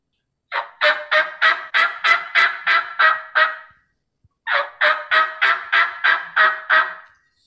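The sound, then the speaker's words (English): Two runs of loud turkey hen yelps made on a diaphragm mouth call: about eight raspy, evenly spaced notes, a pause of roughly a second, then another similar series of seven or eight yelps. “Yelping.”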